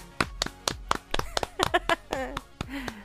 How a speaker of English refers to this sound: Everybody clap your hands.